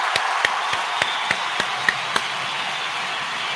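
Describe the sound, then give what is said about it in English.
A brief round of clapping: about eight sharp, crisp claps in a quick, fairly even rhythm over a steady background hiss, fading out after two seconds. No one speaks. “Next up, man, a little round of applause, man.”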